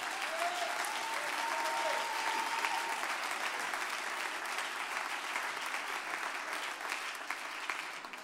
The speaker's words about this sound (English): Clap your hands if you're thankful for the truth.